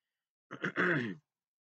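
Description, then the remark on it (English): A brief cough from a host speaking on a show: two quick bursts from the throat run into a short, voiced, groaning exhale, moderately loud and alone, with no talking. “So, pardon me for coughing while I'm talking on the show”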